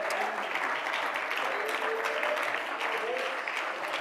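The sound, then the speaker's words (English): An audience claps hands in praise of God in a steady, dense wash of applause that holds at an even loudness throughout, with a few faint voices calling out beneath the clapping. “Come on, somebody clap your hands and praise Him.”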